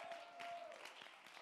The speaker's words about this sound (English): Stand to your feet and clap your hands, and let's give God the praise.